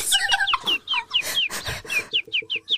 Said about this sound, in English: Your sickly birds have chirped for you. Yes. My sick birds, they're here.